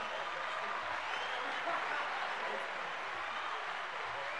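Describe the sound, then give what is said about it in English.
Steady canned crowd applause, a loud, dense wash of clapping that holds an even level for several seconds with no voices over it. “The crowd loves them, folks.”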